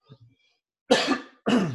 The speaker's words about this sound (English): So on the Christmas light thing, excuse me, I'm going to cough real quick. Let me mute this. I can't mute it. Hold on. Let me cough.